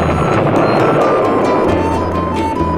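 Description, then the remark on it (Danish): A pirate ship's gunpowder magazine, set alight by a dropped cigar, explodes into a loud, sustained roar of rumbling noise, with crackling bursts flickering through the churning blast. No voices are heard. “Ilden nåede krudtkammeret. Og så...”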